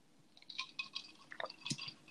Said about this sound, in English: Okay, more water ASMR for you. I'm sorry.